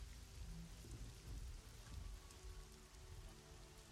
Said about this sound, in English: walks back into the rain.